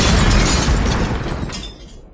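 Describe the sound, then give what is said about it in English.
A bomb explosion: a loud, rumbling blast with a heavy low boom and crackling debris, filling the whole clip before slowly dying away over about two seconds; no one speaks. “I really should have paid more attention to the bomb.”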